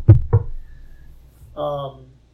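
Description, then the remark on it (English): Two quick, sharp knocks on wood, fairly loud, spaced a moment apart, followed after a short pause by a brief burst of someone's voice. “I'm going to knock on wood right now.”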